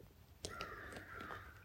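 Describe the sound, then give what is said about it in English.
Several crows caw together in a raucous chorus, harsh overlapping calls over a steady outdoor background hum. “Join in the crow's chorus with the ancient sound current of the Heart Sutra.”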